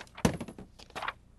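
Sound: dice being rolled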